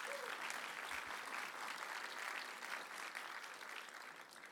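A church audience applauds, many hands clapping in a dense, steady wash of sound that holds at an even loudness throughout and eases off slightly at the very end.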